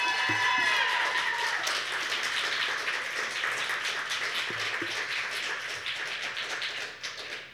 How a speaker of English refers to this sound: We're going to give more of an applause because that was our first time on our stage.